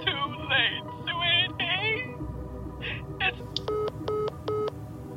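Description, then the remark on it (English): Three evenly spaced telephone keypad tones as 999 is dialled, each a short steady dual-pitched beep, following a stretch of distressed voices over a low background rumble. “Mum, close the phone. Call 999. Call 999.”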